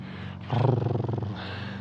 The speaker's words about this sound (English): Oh, progressing the strimmer to a lawnmower now.